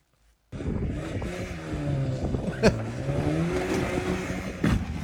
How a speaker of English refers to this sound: Like, also, I love how he definitely misses putting it into gear. Because listen how high the engine redlines before he actually gets some gas behind it.